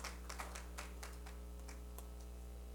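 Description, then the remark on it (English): A scattering of faint, irregular hand claps from a seated group clapping unto the Lord after a prayer tapers off over a steady low hum. No one speaks. “Clap your hands unto the Lord as you're seated.”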